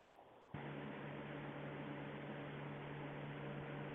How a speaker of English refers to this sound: Okay. I'm hearing nothing but static.